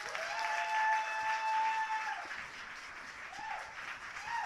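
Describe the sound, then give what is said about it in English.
An audience at a poetry slam breaks into sustained applause for a poet after the judges' scores are read, a dense wash of clapping that stays steady for several seconds, with a few high whistles rising above it. “If you like that poet, clap for that poet.”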